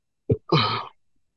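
A person yawns close by: a short catch of breath, then a drawn-out voiced exhale lasting about half a second, falling in pitch. No talking is heard.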